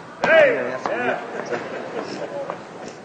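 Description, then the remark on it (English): Several heavy, irregular thumps as a woman stomps her feet up and down on a floor to show her arthritis is healed, mixed with voices talking and exclaiming in the background. “You stomp your feet up down so they can see.”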